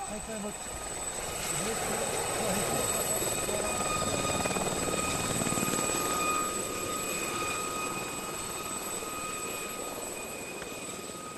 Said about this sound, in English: Approaching. Approaching. Coming in. Over. The rotor blades reawaken Vietnam memories.